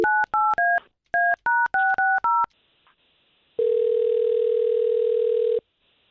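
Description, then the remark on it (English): A phone number is dialed: a rapid series of about eight telephone keypad beeps, each a crisp two-tone note, followed after a pause by a long, steady line tone lasting about two seconds. No one speaks. “We'll try to get him on the line, talk to him for a little bit, and see if we can't bring you in, okay?”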